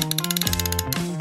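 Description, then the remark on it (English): A quick run of mechanical ratcheting clicks, rapid and evenly spaced, with a bright metallic whir shifting in pitch, a wrench being cranked back and forth. “Wrench!”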